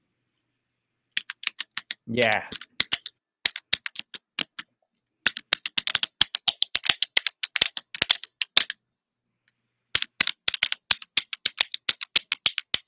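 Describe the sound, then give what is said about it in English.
Steady typing on heavy linear keyboard switches, a crisp stream of clacks in bursts with short pauses, and one brief spoken word near the start. “We play us out with some linear clicking, barely clicking.”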